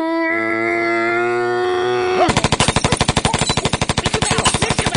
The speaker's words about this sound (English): Didn't you say no machine guns?